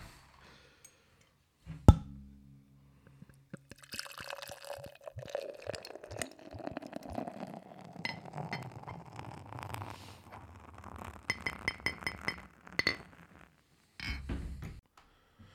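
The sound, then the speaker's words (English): A sharp click, then a steady stream of beer glugs and fizzes into a glass for about ten seconds, ending with a few faint clinks and crackling foam from its white head. “Okay, so this beer is poured out. It had a nice fucking head initially, and now it's kind of died down a bit.”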